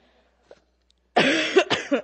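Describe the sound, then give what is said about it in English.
Two harsh, rough coughs in quick succession from a person with a cold, fairly loud, following a brief quiet pause with no talking. “As you can tell, I still have a cold, so we're gonna bear with me if I cough and bear with me if I drink lots of water and love me all the same.”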